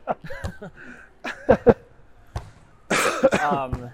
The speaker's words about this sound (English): Oh, sorry for the cough. Oh, forget about the cough. Apologize.